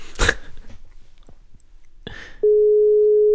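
A telephone ringback tone sounds while calling, a single loud, steady electronic tone that starts near the end and runs on without pause, after a few brief bursts of noise and rustling.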